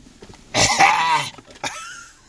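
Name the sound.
coughing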